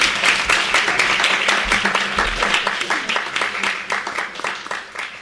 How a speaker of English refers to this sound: Okay, let's give a round of applause. Thank you.